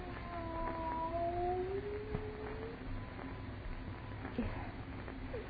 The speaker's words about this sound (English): It is a cat. Not a cat. Look at the size of it. Tiger.